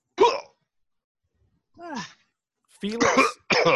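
coughing

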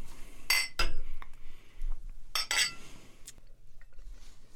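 glasses clinking

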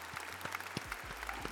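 applause clapping

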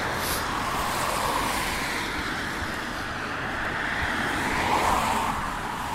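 passing cars

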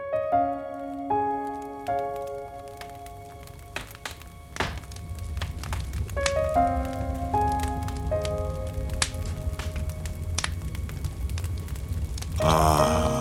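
crackling fire

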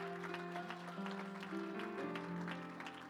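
audience clapping hands

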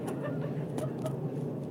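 airplane flying overhead

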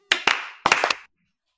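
people clapping hands

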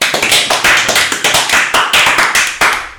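applause

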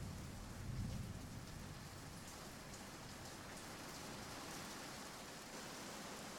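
heavy rain falling

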